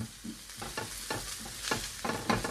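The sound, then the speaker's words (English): Steady crackling sizzle of aromatics frying in residual chicken fat left from cooked chicken thighs, in a pan not wiped out, broken by several scraping strokes as a utensil stirs and pushes them around the pan. No voices. “We can kind of cook the aromatics and some of that residual chicken fat that came off the chicken thighs.”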